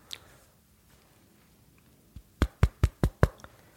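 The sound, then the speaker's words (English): Someone raps firmly on a door, a light tap followed by five quick, evenly spaced knocks. No one speaks and it is otherwise quiet. “Someone's here? What? FBI, open the door, please.”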